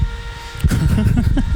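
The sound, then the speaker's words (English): A steady mechanical whine, like a drill bit boring through something, with thin high-pitched tones that hum throughout before a louder, rougher grinding surge kicks in halfway and continues to the end. “Actually, it just sounds like a drill. Like they have like a bit just going through something.”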